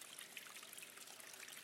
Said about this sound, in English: The water sound from outside. Yeah, there's this sort of dripping of the water over the edge, and it's very calming. It's really classic, but I really like it.